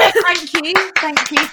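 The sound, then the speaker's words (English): A short burst of people clapping, sharp irregular claps mixed with a loud, sustained voice calling out over them. “I feel like we all need to clap.”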